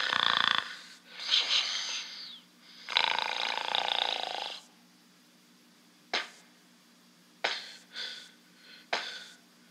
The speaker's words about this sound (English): The green scaled creature. It has these large black eyes. It's no whites. It's all pupils. No mouth. It's breathing out its gills, these things on its neck.